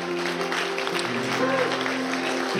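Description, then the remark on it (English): A church audience gives Jesus a hand clap after a prayer, with steady, dense clapping that fills the whole moment, while a sustained keyboard chord hums underneath and voices murmur faintly in the background. “Can we give Jesus a hand clap?”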